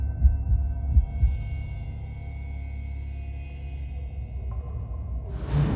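Deep, muffled heartbeat thumps pound at the start, a few heavy beats that fade into a low sustained drone, ending with a rising whoosh.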